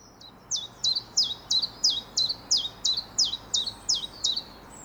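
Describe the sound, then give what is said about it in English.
A chiffchaff sings its two-note song, a steady run of about a dozen bright, evenly spaced chirps alternating slightly in pitch, clear over faint background hiss with no voices. “And they kind of give equal emphasis to each chiff and chaff.”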